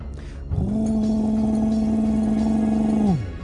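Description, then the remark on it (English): A truck engine's steady, droning hum swells in as the truck drives up to a very big building in an open field. It holds one even pitch for a couple of seconds, then winds down. It is fairly loud, with no talking. “So the truck came to this building and a door opened in the side of the building.”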